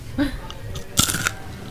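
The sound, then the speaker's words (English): Crisp crunching as teeth bite into hard, caramelized nut brittle: one sharp crack followed quickly by a few smaller brittle snaps, then quiet. “There's a wonderful little crunch.”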